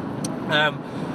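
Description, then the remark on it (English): A single short cough bursts out, brief and moderately loud, with a faint steady background hum around it. “sorry, cough number two on the cough counter.”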